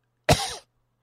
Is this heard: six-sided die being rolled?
no